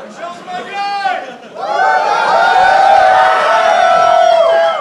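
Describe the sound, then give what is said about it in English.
A crowd at an event cheers for a speaker, a short burst of shouts that dips briefly before swelling into a louder, sustained roar of whoops and yells lasting several seconds. “And I think Moltz is so funny, so I can't believe I got the cheer.”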